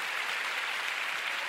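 Steady, dense clapping from an audience giving God a big clap, a continuous wash of many hands with no distinct individual claps and no talking over it, holding at an even moderate level throughout.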